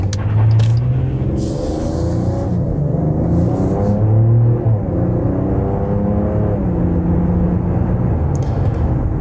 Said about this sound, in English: That's a lot of juice from a six-cylinder engine displacing only 3 liters.